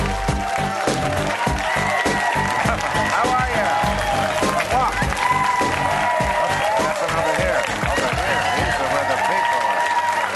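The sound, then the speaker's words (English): A studio audience at Real Time applauds before the monologue, loudly and steadily for about ten seconds: a dense wash of clapping mixed with cheering and whoops, sustained without a break. “Ladies and gentlemen, oh my God, what a crowd.”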